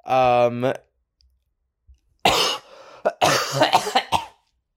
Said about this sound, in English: Well, I don't know what that cough was about.